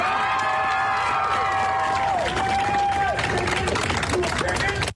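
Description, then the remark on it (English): A large crowd cheers and whoops loudly, with scattered clapping and excited voices layered into a dense, sustained roar that fills the whole moment. “Why are they all cheering?”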